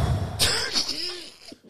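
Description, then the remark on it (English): A voice mimics a car engine failing to start: a sharp, sputtering burst, then rough coughing chugs and a brief rising-and-falling whine that dies away. “Every time you ready to start your car, it's like.”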